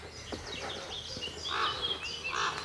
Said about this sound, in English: Of angry corvids. Well, they all sound angry. Maybe they're just chatting.